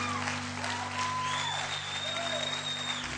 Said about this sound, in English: Can we give the music group a big group clap? They did awesome.